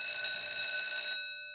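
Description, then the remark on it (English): A school bell rings with a steady, loud metallic clang, holding one bright high-pitched tone for about a second before quickly fading away. No one speaks. “Saved by the bell!”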